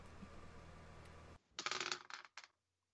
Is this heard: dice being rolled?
yes